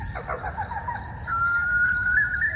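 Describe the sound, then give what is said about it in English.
A bird call: a few short chirpy notes, then a long steady whistling tone held for over a second, moderately loud against a low background rumble, with no talking. “Was that like a mourning dove? No, definitely not. Could be a barn owl.”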